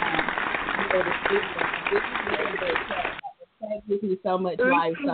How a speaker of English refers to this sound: I'm going to hit a round of applause.